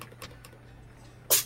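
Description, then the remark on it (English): A single sharp sneeze bursts out near the end, loud and hissy, after a stretch of quiet background hum with a few faint soft clicks. “That was a sneeze.”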